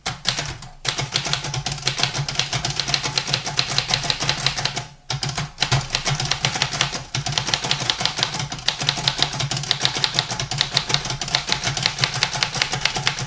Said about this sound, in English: I remember parking in downtown Santa Cruz in my 1956 faded white school bus, typing rat-a-tat-tat on an ancient black Royal typewriter.